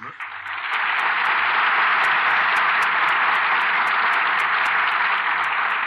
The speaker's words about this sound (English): The curtain falls on Slattery's Hurricane, and here are our stars who certainly deserve your applause.